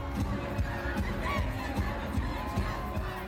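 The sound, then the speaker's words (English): A packed crowd at a concert by an American band in the Black Sea resort city of Batumi, Georgia, roars in a dense, steady wash of voices and shouts, with regular low thumps pulsing underneath throughout. “In Georgia's resort city of Batumi, on the Black Sea, a packed crowd at a recent concert is watching the American band”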